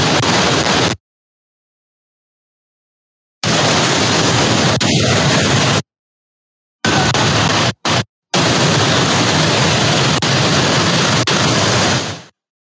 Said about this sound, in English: if you don't have DLive, all you're hearing are the waves